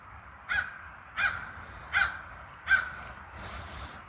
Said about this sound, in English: Crow, also a local.